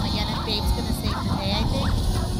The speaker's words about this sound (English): Is this a wolf? Rex is back, I think. I think. You know what? I honestly don't know. It is wolves.